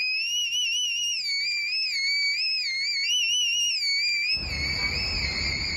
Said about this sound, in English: She taught herself the … whistle technique. Listen to this. And so I taught myself whistle tones and things. Whistle tone. Now, what is whistle tone? It's the tone. It's the … tone.